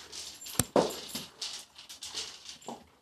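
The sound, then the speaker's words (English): A pit bull dog whimpers and whines in short, repeated bursts at feeding time, with a sharp click early on and a few breathy yips scattered through. “The reason we feed these dogs separately is because my little pit is a little aggressive, and we're trying to avoid any food aggression or possible fights between the two dogs.”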